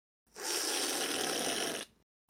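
A loud, drawn-out slurp of a Monster Energy drink, one continuous airy, hissing pull with a bubbly, rattling texture lasting over a second before cutting off abruptly. No one speaks.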